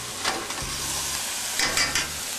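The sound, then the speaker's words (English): Steady sizzling of finely minced garlic sautéing in a pan with the heat turned down to medium, a bright continuous crackle with a few scraping stirs and a low hum underneath; no one speaks. “The garlic I've mixed up fine. Turn the heat down to medium. Saute a little bit.”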